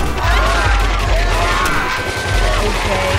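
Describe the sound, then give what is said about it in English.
Gunshots at a party crack through a loud, distorted cell phone recording, a few sharp bangs buried in a dense wall of crowd noise and shouting voices that never lets up. “You boys had some real guns.”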